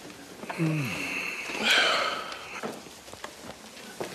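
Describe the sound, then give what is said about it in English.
A man in a courtroom draws a loud, hard sniff sharply through the nose, with a brief low vocal sound just before it and quiet background noise afterward. “Close-ups of him sniffing real hard.”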